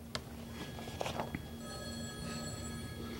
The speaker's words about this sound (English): Who's on the phone? Who's calling you right now? It's God. He wants to talk to you. Will you take the call?